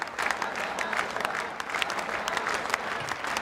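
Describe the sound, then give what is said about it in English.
A large crowd at what looks like a gala event claps a steady beat and chants. The claps form a loud, dense, crackling wash of hands that carries on without a break, with faint crowd voices blended underneath. “Crowd's into it. I don't know what they're chanting.”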